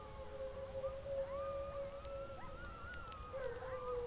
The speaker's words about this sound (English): Boy, those coyotes. Did you ever notice how different one pack of coyotes can sound from another? Some yip, some howl, some laugh, almost like hyenas.